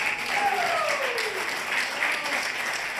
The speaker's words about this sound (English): Woo. The ladies are clapping.